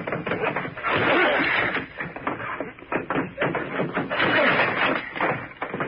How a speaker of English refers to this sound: We'll probably have to force that old door. Get ready. We'll hit it together. I'm ready. All right. Now.